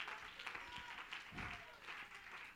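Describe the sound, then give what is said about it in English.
An audience claps steadily during a church sermon, a dense wash of many hands with faint voices mixed in, sustained at a moderate, even level throughout. “Somebody ought to clap your hands and give God praise.”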